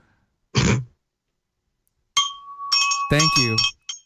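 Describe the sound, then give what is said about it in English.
A short throat-clearing burst, then after a pause a bell-like sound effect rings out with a sustained bright tone lasting over a second, a voice briefly sounding over it. “Was a very delayed bell.”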